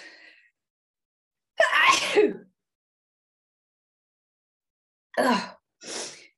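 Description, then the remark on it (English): A loud sneeze bursts out after a brief quiet, followed a few seconds later by two shorter breathy bursts, like sniffs or a smaller follow-up sneeze. No talking accompanies it. “I'm going to sneeze.”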